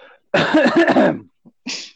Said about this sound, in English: Oh man, I shouldn't have coughed.